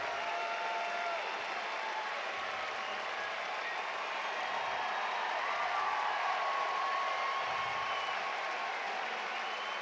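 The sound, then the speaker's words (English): A large stadium crowd at Great American Ballpark in Cincinnati roars steadily, with applause and rhythmic "Joey" chants for Joey Votto rising from the dense, sustained wash of cheering voices. “And here come the Joey chants.”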